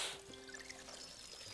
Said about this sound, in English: if you could just pour some water back here. Let's see what happens.